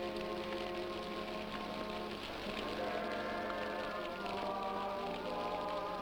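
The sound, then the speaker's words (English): Steady rain patters continuously on a surface, a soft even hiss throughout, with a sung hymn blending underneath. “The sound of the rain and the sound of the hymn is putting him to sleep.”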